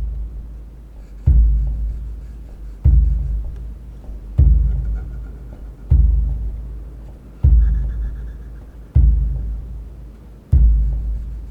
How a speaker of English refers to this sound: The drum beats slowly and steadily, gentle beats tinged with an energy that awakens you from the inside.